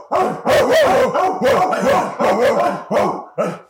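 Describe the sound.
A dog barks loudly, a quick run of about six sharp, harsh barks in under four seconds with short gaps between them, and no talking over them.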